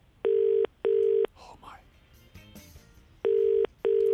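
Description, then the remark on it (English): A phone line rings out with the classic double-burst ringing tone as a call is placed, two short pairs of steady buzzing tones separated by a pause, with faint murmuring voices in between. “Right, I'm going to call here.”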